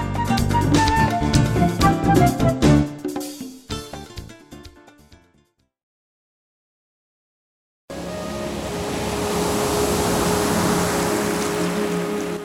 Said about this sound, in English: Luscious ocean waves, peaceful music, inviting us to spend time together in the quiet.